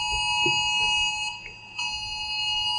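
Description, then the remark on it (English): A phone alarm rings with a steady, high-pitched electronic tone that holds throughout, dipping briefly midway, over low background rumble and no talking. “Too many phones, this damn team.”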